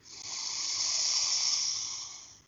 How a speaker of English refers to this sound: So all you got to do, you just take a big breath in through your nose. And then you just slowly let it go. And you can do it again. And let it go. Filling up with air. Letting it go. And last time, breathing in.